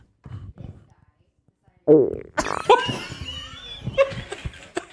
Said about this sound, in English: So I see he's got a fart brewing.